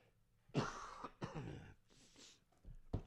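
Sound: coughing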